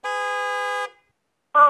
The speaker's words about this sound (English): You hear that? I'm at the library. Yeah, we're honking. We see you over there. We're honking.